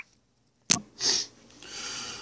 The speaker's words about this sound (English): I gotta blow my nose. I'm sorry, I didn't mean to break down.